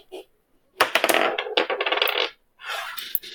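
Traveler dice rolled for a strength test clatter and tumble across a hard surface in a loud burst of rattling clicks lasting a couple of seconds, followed by a short second rattle as they settle.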